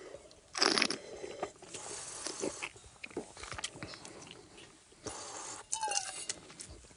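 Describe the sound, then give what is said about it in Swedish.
A red wine of 80% Sangiovese with 10% each of Cabernet and Merlot is spat into a large aluminium spittoon during a tasting: several splashy bursts of liquid striking metal, with a faint metallic clink and ring after the last spit, amid quiet handling noise. “Och som vanligt spottar jag din jättestor, det låter som jag spottar en stor aluminiumtoalett var den där gången, ja, innan det har kommit ner någonting.”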